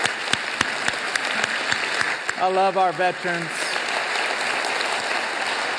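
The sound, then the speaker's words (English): A crowd applauds veterans who have stood up, with steady, dense clapping throughout, punctuated by sharp individual claps, while a man speaks a short line over it midway. “Let's give these guys and girls a big round of applause.”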